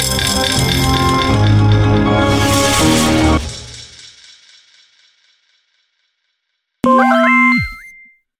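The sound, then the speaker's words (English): A phone notification chime, reminding of a calendar event, rings out loud and bright, its bell-like tones fading over a few seconds; after a short silence, a brief sliding electronic tone sounds. No one speaks. “woke to the sound of her phone chiming three times.”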